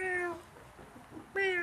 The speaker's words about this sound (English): Meow. Right? Why does it have to be a cat, damn it?